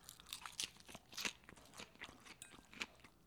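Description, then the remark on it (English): Crunchy chewing of a raw salad with large pieces of broccoli and carrots, a quick series of sharp, crackly bites and grinding crunches repeating irregularly, with no talking. “The carrots are hard to get into, and broccoli, in large quantities, is not an easy thing to chew.”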